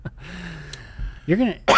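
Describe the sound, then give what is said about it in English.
A short throat clearing, a low rasp that rises into a gruff voiced grunt, followed at once by a sharp, breathy cough, from a person with a scratchy throat after a cold. Fairly loud, with no talking. “You're gonna get everybody sick with your cough.”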